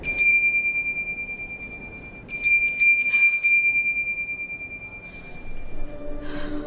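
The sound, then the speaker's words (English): A small bell being shaken rings with a sustained, bright metallic tone, struck again around two and a half seconds in and shimmering as it fades; no voices are heard. “And all he has to do is say he believes and it finally rings for him.”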